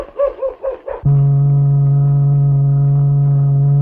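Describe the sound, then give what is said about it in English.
A few short, yelping bark-like bursts, then the whistle of the boat at San Manland sounds one long, steady, low-pitched blast that holds loud and unwavering to the end. “What's that whistle? That must be the boat over yonder at San Manland.”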